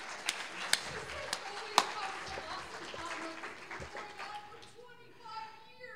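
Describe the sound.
An audience applauds in a dense, steady wash of clapping with a few sharper, louder claps standing out, then it thins out as a voice comes in at the end.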